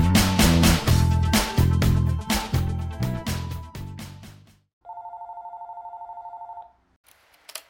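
A loud telephone rings in rapid repeated bursts, then falls quiet before a steady, slightly buzzing electronic tone sounds for about two seconds. No one speaks.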